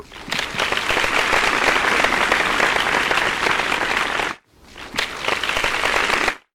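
A loud, dense burst of applause runs for about four seconds, cuts off abruptly, then briefly resumes for another short stretch before stopping again. No one speaks over it.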